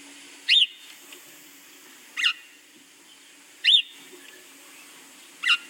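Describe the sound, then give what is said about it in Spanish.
A recording of sparrows played back: four short, bright, high-pitched chirping bursts spaced roughly a second and a half apart, heard alone over a faint steady hiss, with no one talking. “Y busqué cómo se escuchaba la voz de los gorriones, creo que lo tengo aquí, no te voy a poner todo, pero si hay algo así, mira.”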